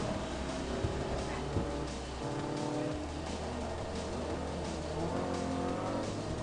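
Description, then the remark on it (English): Several small Class F car engines, such as Mini Coopers and Ford Focuses, hum and rev steadily in a video-game race, with occasional tire squeals over a continuous, dense mix of motor drone. “These are all Class F cars, so they're, the Mini Coopers of the world and the Ford Focuses.”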